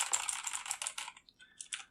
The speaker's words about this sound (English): And she's like, okay, let me see. I hear some typing.